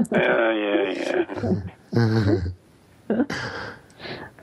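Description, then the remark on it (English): A person voices a loud, growly tiger-like roar, then follows with a few shorter rasping growls and huffs, with nothing else in the background. “I thought she was a tiger.”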